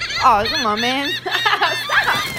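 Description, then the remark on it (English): A voice imitates chickens with a run of loud, warbling, wavering clucks and squawks, lasting a couple of seconds with a brief dip in the middle. “Because the fucking birds...”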